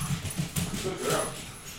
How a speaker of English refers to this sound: Man, get these damn dogs out of here. That dog bites me.